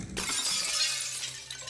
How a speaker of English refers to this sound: Then, we heard the high-pitched crash of glass breaking.